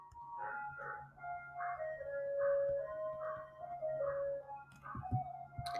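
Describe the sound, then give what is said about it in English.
A tinkling ice cream truck melody plays as the truck drives by, its repeating chime notes steady and moderately loud over a low background hum, with a few soft knocks near the end. “Just enjoy the little ice cream truck music for a few seconds.”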